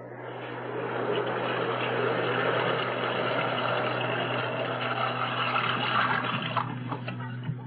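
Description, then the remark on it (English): A steady, continuous rush of water pouring into a bathtub, fairly loud, filling the tub for a hot bath, with a low droning hum underneath and no voices. “I'm going to boil some water and fill the tub.”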